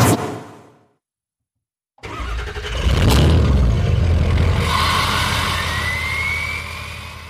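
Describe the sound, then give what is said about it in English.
A truck engine fades out, then after a second of silence it roars to life and revs hard, a loud, rumbling growl that holds steady with a rising whine before easing slightly. “If your truck does not sound pretty, there's one place you need to go to get this thing juiced up.”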